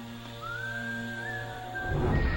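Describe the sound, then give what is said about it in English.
A thin, eerie whistle holds a steady high pitch with a slight waver, sustained for about two seconds over a low droning hum before breaking off into noisy rumble. “Creepy whistles.”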